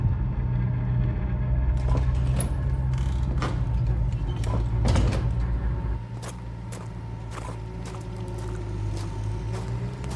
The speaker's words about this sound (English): Wow, what's happening here? Everything is getting dug up. There's a tractor ploughing up and down, and there's somebody over there digging with a spade.